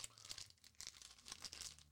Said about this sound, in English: I know really bad to eat on a microphone. Good thing I'm almost done. Especially if you squeak that wrapper paper.